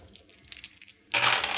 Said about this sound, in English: Oh, my dice are going everywhere.